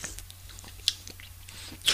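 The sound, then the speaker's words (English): A quiet sip of a tart, apricot-flavoured 5% alcohol drink, with soft wet mouth clicks and a brief slurp near the end over a faint low hum; no one speaks. “But this one, I haven't tasted. Let's see, a little sip.”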